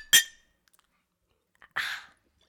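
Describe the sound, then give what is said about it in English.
A single sharp clink of glasses of New Amsterdam vodka shots in a toast, with a short bright ring, then a brief pause, a couple of faint taps, and a soft breathy rush of sound. No one speaks. “We're cheersing to the support and big guns.”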